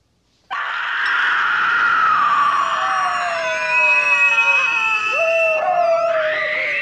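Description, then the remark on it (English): In a film's dinner scene, a loud chorus of people howl like wolves at a screaming woman, several long overlapping wails rising and sliding in pitch, continuing without a break for several seconds. “They're fucking howling at her like they're goddamn wolves.”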